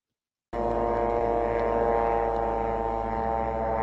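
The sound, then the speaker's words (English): A surveillance drone in action over Gaza: its steady, droning buzz cuts in abruptly and holds at an even, fairly loud level, a constant harmonic hum with no voices. “we've got another short video, and this is a film that was taken recently in Gaza of drones in action.”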